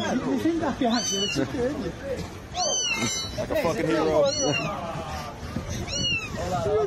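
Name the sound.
kitten meowing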